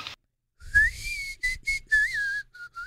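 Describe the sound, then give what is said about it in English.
Someone whistles a short tune up close, a few sliding, wavering phrases with breathy air noise, ending on two brief, separate notes. “You know how to whistle, don't you, Steve? You just put your lips together and blow.”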